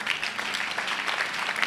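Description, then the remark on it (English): A crowd at a global ICGC church gathering claps steadily as a hand clap unto the Lord, many hands blending into a dense, continuous wash of applause at moderate loudness, with no voices standing out. “Someone should give a big hand clap unto the Lord.”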